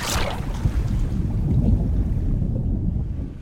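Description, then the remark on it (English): An ocean wave crashes with a bright splash at the start, then churning water and heavy wind rumble and roar steadily before easing slightly at the end. “But don't forget to quickly get on your feet, because time and tide waits for no man, and another wave is coming your way.”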